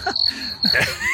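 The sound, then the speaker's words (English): A brief burst of a crickets-chirping sound effect: a steady, high-pitched trill runs throughout at moderate volume, with a few soft low rustling sounds beneath it. “I have crickets.”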